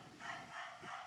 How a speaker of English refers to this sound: Guys, sorry, my neighbor's dog's over there barking.